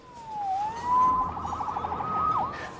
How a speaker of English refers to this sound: Saved by the siren.